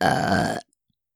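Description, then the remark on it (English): A single loud burp from a pregnant woman rumbles for just over half a second, then cuts off into silence. No talking accompanies it. “The pregnant lady's the one who's burping.”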